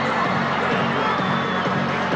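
A dense crowd at a game roars and shouts continuously for t-shirts being shot into the crowd, a steady wall of overlapping voices with cheering swells, loud and unbroken throughout.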